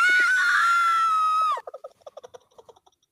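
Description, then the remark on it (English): A woman's loud, sustained high-pitched scream in a movie clip holds steady for about a second and a half, then breaks off into a quick series of short, choppy gasping bursts. “She's screaming for the murders that happened.”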